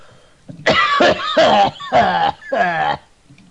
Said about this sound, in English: If you smoke more, it'll help with the cough, right? Weed is medicinal.